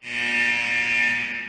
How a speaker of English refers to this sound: That buzzer means that we are out of time for the first period